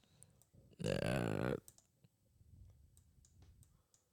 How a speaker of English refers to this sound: Keep clicking away. It's okay.